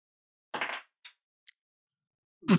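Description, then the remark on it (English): Heavy dice clatter across a table, rolled to hit in a tabletop role-playing game: a rattling tumble, two small ticks as they bounce, then a louder knock as they land. No one speaks. “Hitting you with the heavy dice.”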